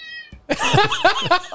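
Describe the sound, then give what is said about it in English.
A cat meows loudly, letting out a strained, drawn-out yowl that wavers in pitch, just after a brief high tone fades out. “It's got to be the loudest cat ever.”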